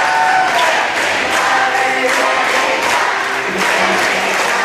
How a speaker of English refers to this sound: chanting Men in Black and getting the whole crowd to do it.